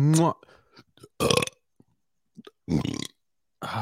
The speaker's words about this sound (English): Me burping the alphabet. Correct.